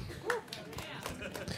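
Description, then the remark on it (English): A few sparse, scattered claps, soft and uneven, with brief voice sounds mixed in, more a faint smattering than full applause. “That was the appropriate applause.”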